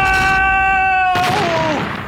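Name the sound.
explosion sound effect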